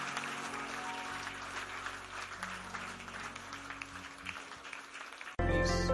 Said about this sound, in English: Give the Lord a big clap of praise